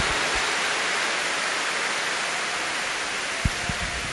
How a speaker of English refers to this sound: Now go ahead, give my boy a big, big round of applause. He did a great, great job.